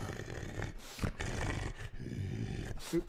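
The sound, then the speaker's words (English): A person imitates a wolf's growl: loud, rasping snarls held for several seconds, broken by a couple of brief pauses for breath. “Do the breathing, like the growling wolf.”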